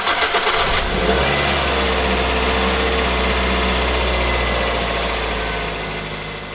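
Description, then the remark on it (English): A car engine cranks with a brief, harsh starter whir, catches, then settles into a steady, low rumble that eases and fades slightly at the end as the car pulls away, being driven to work. “I got up, grabbed a quick shower, got dressed, walked and fed the dog, and then hopped in my car to get to work.”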